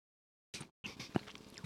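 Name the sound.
chewing chewy candy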